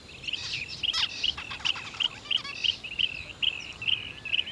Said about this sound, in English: Oh, okay, I think I can see that one of the birds has a short, bright red beak and black and white stripes on its tail. I know what it is, it's a zebra finch. I think there must be nearly 50 of them in this patch of bushes.